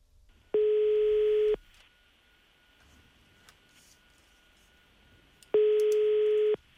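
A phone call's ringing tone sounds twice as a man takes the call at an airport, each steady electronic burst lasting about a second with a long pause between, clear and loud over a faint background hiss.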